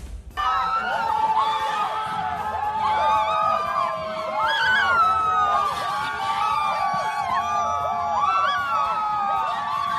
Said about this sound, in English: That screaming that you are hearing now is the sound of protesters outside of the Supreme Court of the United States of America.